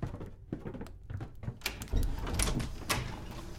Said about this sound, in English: As the bell sounded the hour, there came a knocking at the street door. I went down to open it with a light heart